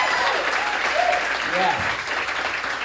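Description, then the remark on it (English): A comedy show crowd claps steadily for a few seconds in a round of applause for the other comedians, a dense, even wash of applause with a couple of brief voices or whoops rising out of it. “Let's have a round of applause for both the other comedians.”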